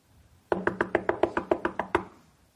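A rapid series of about ten sharp knocks on a door, evenly spaced, rapping steadily for a second and a half with no voices.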